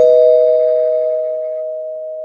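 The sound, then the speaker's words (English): A single bell is struck once as a spoiler warning, giving a clear, steady ringing tone that sustains and slowly fades over about two seconds, fairly loud with nothing else around it. “Mild spoiler alert, I'm going to ring the bell just in case people out there haven't been keeping up, but I'll ring it.”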